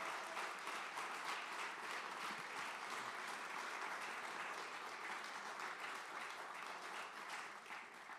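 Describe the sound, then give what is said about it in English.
A church audience breaks into sustained applause honoring Pastor David and Cindy, a dense, steady wash of many hands clapping at once for about eight seconds with no voices standing out. “And so real quickly, I know that he's not even here today because he's super sick, but would you honor Pastor David and Cindy by just giving them a huge round of applause real quickly?”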